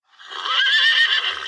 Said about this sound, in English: Did you hear that? Let me turn the volume up too. I heard it. Yeah, you can hear it. Yeah. So you have horses, all different horse whinnies.